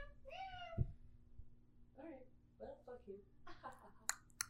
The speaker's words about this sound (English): Where'd you go? Meow meow. He went in the kitchen.